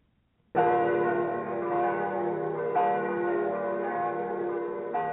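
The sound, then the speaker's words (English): The church bells of Rome ring out in a rich, sustained peal with overlapping tones, struck again at intervals so the ringing swells and lingers without pause, heard from a not-too-far distance in the early morning, with no voices. “We could hear them in the not-too-far distance, the bells of Rome.”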